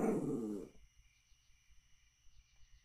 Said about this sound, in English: There's Rusty the dog coming to sniff at him. He's going, wake up, kid, wake up.